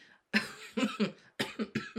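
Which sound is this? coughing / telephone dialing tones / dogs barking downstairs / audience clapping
coughing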